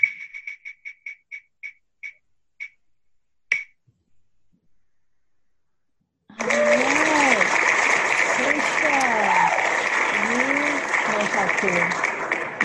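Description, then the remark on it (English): A run of rapid clicks from a spinning name-picker wheel slows to a stop, then after a brief pause a loud burst of crowd applause sound effect with cheering voices fills the rest. “So if y'all are not going to clap, then the wheel will clap for you.”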